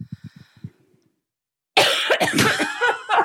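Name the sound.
cough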